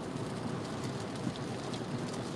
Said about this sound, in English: Yeah, I hear the rain, man. Yep.